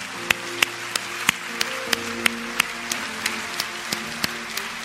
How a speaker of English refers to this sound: And number 12, I am protected from all harm and all evil in Jesus' name. Can we give him a clap today?